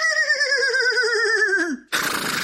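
A horse whinnies loudly, a long, quavering neigh that falls in pitch before cutting off, followed by a short burst of breathy snorting noise.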